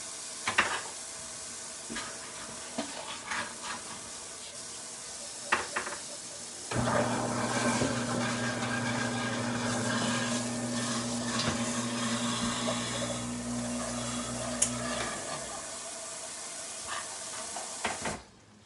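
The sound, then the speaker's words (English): Food sizzles and bubbles up steadily in a pan, a constant hissy crackle, with a low steady hum joining from about seven to fifteen seconds and occasional clinks of cookware. “I'm going to turn it down a bit. It's bubbling up.”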